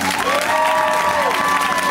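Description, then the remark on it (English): A crowd applauds and cheers loudly and steadily as comedian Aparna Nancherla is welcomed onto a show, a dense wash of clapping with sustained whoops and tonal cheers rising above it, with no pause from start to end. “Corporate, please give a warm welcome to Aparna Nancherla!”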